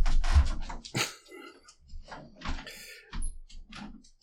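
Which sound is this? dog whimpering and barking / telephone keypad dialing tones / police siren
dog whimpering and barking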